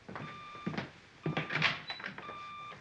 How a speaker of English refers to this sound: There it is again. That funny beeping sound from Bruce's study. No doubt some of his hi-fi equipment needs adjusting.